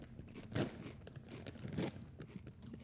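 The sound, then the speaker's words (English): Crisp crunching on salted egg yolk fish crisps from Singapore: two loud bites about a second apart, with softer chewing crackles in between and no talking. “This says Singapore salted egg yolk fish crisps.”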